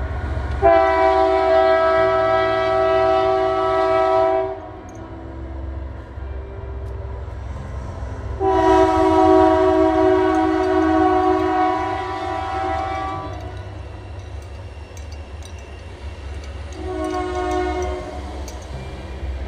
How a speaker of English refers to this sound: All right, here comes a train, y'all.